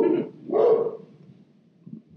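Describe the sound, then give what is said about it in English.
Two loud dog barks in quick succession from Wallace, a dog who was supposed to be a guide dog, the second fuller and longer, followed by a second or so of quiet low background. “If he was supposed to be a guide dog, he thinks he's a guard dog.”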